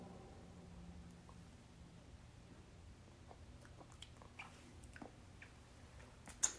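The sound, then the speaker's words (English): Quiet chewing of a ball of candy sushi, with wet smacking clicks and small crunchy snaps scattered irregularly over a low background hum, ending in one sharper click. “I'll taste one ball of the sushi.”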